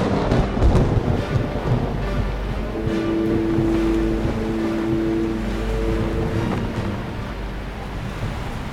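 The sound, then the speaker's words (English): Loud, steady roar of stormy wind, hard-falling rain and crashing sea around a ship near the eye of the storm, with a low rumble throughout and a brief creaking or droning tone rising in the middle; no voices. “We're near in the eye of the storm! Hoist the mizzen and raise the topsail!”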